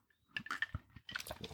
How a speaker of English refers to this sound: I swear I am about to take a sip of my very first margarita. All right, let's go.